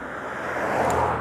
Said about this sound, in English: Another car.